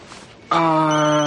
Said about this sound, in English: Well, Sarah's calling again, and it still doesn't look like Chuck wants to answer the phone.